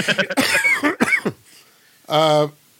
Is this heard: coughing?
yes